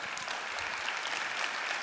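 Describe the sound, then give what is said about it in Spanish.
A crowd claps steadily in applause to the Lord, many hands blending into a dense, continuous patter of applause that fills the space at a fairly even level throughout. “Aplausos al Señor.”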